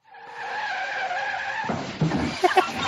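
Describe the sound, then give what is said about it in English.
A car's tires give a sustained, high-pitched screech for over a second, then the car crashes in a loud burst of clattering, crunching impacts. The sequence is prominent, with no voices. “It's a car crash, bro.”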